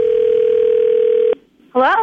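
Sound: telephone dial tone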